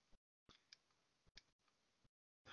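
computer mouse clicking

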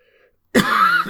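coughing

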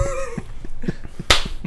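hand clapping

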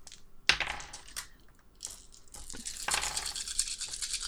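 dice rolling

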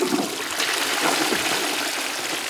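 toilet flushing

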